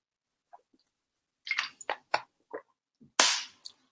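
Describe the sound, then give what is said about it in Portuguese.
Someone drinks water: a few faint clicks, then a run of sharp wet gulps and swallowing sounds, ending with a brief bright crackle, like a plastic bottle being squeezed. No one speaks. “Ora bem, vamos então, e tenho que beber um bocado de água porque estou a falar muito rápido hoje para conseguir chegar ao mercado.”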